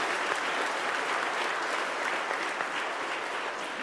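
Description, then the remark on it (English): An audience at a church service claps in steady, dense applause, a continuous wash of many hands sustained at even loudness throughout without any voices standing out. “letting it be known by saying amen, amen, and applause.”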